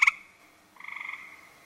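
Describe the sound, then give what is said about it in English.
A gray tree frog gives a loud musical trill, a quick pulsed burst followed by a longer rapid rattling call, heard clearly and alone with no talking. “That's a gray tree frog.”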